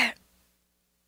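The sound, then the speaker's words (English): A person imitates a dog's cough with a single short, rough burst from the throat, fairly loud, which fades quickly into near silence. “That's a dog cough”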